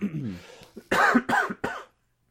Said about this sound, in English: Yeah, the outtakes is just going to be coughing and things, isn't it? I know, right? It's going to be 5 minutes of the both of us. People love it.